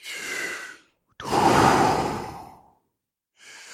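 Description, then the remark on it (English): Deep breaths drawn in and pushed out in a steady rhythm, fairly loud, during a guided breathing exercise: a short inhale, a longer, fuller exhale, then another breath beginning, with no talking. “Just go with the flow. No minding. Just go. You feel what you feel as you're breathing.”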